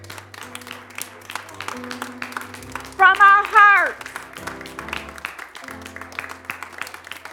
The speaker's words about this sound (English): Who are not white men, can we please stand? And can we please applaud the ones who are here?